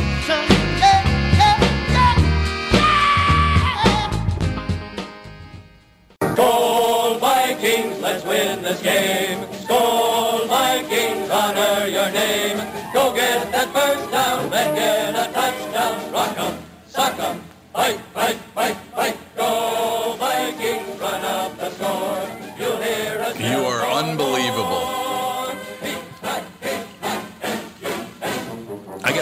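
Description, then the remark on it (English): An old recorded Vikings football team cheer plays loudly and continuously, a dense, bright stretch of voices and music after a brief opening section that cuts off around five seconds in. “Isn't that like the whitest cheer you've ever heard in your life?”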